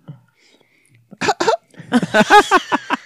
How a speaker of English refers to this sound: Your coughing was disturbing him.